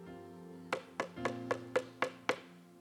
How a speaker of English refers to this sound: And this door, listen to me, the Holy Spirit, God, he can do anything he wants to do, but he's not going to force a door open on you. He's knocking. Can you hear him?